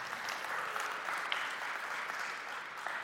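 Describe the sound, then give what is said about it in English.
An audience claps steadily for a few seconds, a dense, even wash of many hands with scattered sharper claps standing out, no voices breaking through. “You can clap.”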